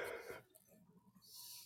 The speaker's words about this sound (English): Who's yawning? I am. Like I said, it's been one of those days.